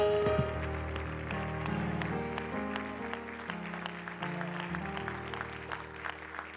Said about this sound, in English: Would you give the Lord a hand clap of praise?